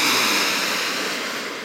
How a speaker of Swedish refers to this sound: Men vi börjar med att ta ett djupt andetag, hörni, för att grunda oss in lite mer i nuet. Andas in genom näsan, fyller upp bröstkorg och magen med luft.